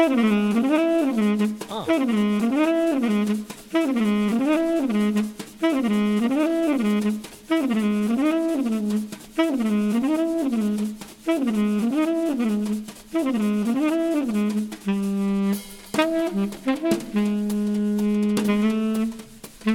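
A jazz recording plays with no one talking: a horn repeats a short, swooping rising-and-falling phrase about every second, loud and steady, before breaking into held notes near the end.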